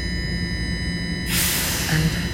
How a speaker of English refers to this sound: And the train is going, it's going away. There, to the left, and out. It's out, y'all.